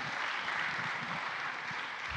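A crowd applauds steadily at a baptism, a dense, even wash of clapping that holds at a consistent loudness throughout with no talking over it.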